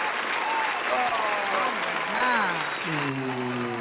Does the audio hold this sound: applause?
yes